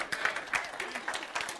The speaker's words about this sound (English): Now, all these men in here, I got four people clapping.